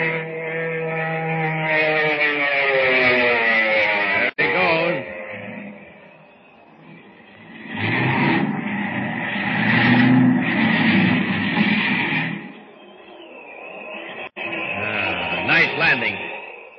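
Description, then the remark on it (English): A seaplane's engine drones loudly with a steadily falling pitch as it comes down, then gives way to a rough, rushing roar of churning water and engine that swells and fades twice. “Look, the plane's gonna land.”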